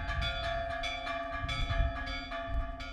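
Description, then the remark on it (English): Church bells ring out in a steady series of strikes, each clang blending into a lingering metallic hum, over a low outdoor rumble, summoning the town's residents to evening mass at the church on the central square. “Bells summon residents who trickle down the town's dirt paths and steep streets onto the church's central square for evening mass.”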